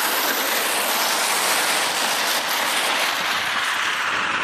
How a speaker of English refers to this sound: Traffic has decided it doesn't want you to hear this story.